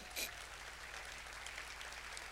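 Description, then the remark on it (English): An audience claps for the Lord Jesus, a wash of many hands with a slightly louder burst at the start, continuing steadily with no one speaking over it. “Clap for the Lord Jesus.”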